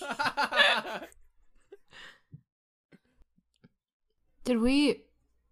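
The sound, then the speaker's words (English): A voice imitates a camera shutter clicking repeatedly, with a few short, faint clicks in the quiet gap between two bursts of vocal sound. “You hear clicking coming from the other side of the room. K-chick, k-chick, k-chick, of a camera going off.”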